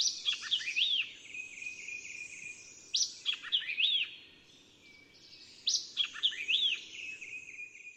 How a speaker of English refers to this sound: the white-eyed vireo, or flycatcher, deserves particular mention. The song of this bird is not particularly sweet and soft. On the contrary, it's a little hard and shrill, like that of the indigo bird or oriole.